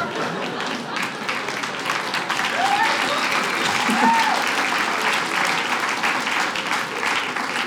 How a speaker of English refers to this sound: Yeah, you better applaud.